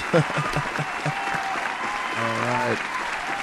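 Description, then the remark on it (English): Steady audience applause, a dense continuous patter of many hands clapping at even loudness, with a few short voiced shouts and a brief sustained vocal whoop rising over it. “That's enough applause, man.”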